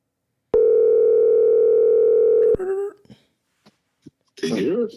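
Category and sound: signal or alarm, phone call ringing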